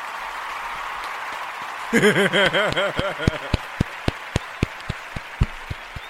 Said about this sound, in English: Clap it up for yourself, man. You deserve it. You deserve a clap.